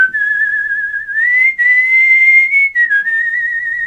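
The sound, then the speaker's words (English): A person whistles a slow, sustained melody, the pure tone wavering with a gentle vibrato as it shifts between a few held notes, with no talking. “How do you vibrato your whistle?”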